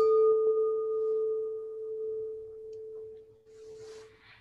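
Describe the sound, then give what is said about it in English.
A small gong is struck once and rings out with a steady, mid-pitched hum that slowly fades over several seconds, with a faint rustle near the end. “I'll hit a little gong here.”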